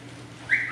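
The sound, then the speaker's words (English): A person gives a short, bright whistle partway through, a quick two-part rising and falling tone lasting well under a second, fairly loud over a faint low hum. “Whistle guy. I happen to have one right here.”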